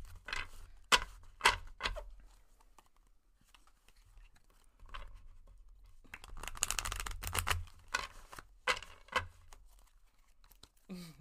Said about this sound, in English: So right now you're going to hear me shuffle some cards for Anthony.